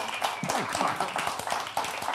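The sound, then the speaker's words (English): An audience claps steadily at the end of a show, a dense patter of many hands, while a voice speaks faintly underneath. “Don't clap for this thing we threw together at 7 p.m. Don't applaud this.”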